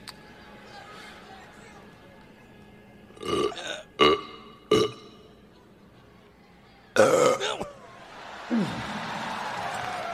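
A loud, wet burp rumbles out during a burping contest, preceded by a few short, sharp bursts and trailing into a gurgly rasp over faint background noise.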